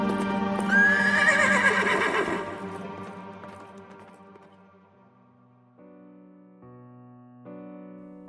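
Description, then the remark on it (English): A black horse named Gunpowder, carrying a goblin rider, neighs loudly over clattering galloping hooves as it passes by like a whirlwind, the commotion fading quickly as quieter, steady tones take over. “He was tumbled headlong into the dust, and gunpowder, the black steed, and the goblin rider passed by like a whirlwind.”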